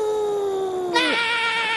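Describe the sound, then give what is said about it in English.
People howl like wolves: a long, steady wail that slides downward, then a brighter, higher howl takes over and holds, loud and sustained. “Crew, howl with me so that we might set the seven seas ablaze with fear.”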